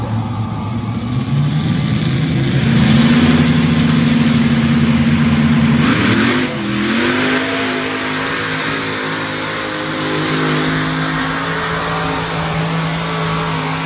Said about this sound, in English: John sent me a video of Cole driving the tractor. So first time ever he jumped on a 4-engine mod. This was in Tulare, you said? This is in Turlock.